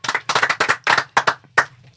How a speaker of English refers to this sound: I can't believe that we've already reached the 10th episode. I think that deserves a ding and a clap.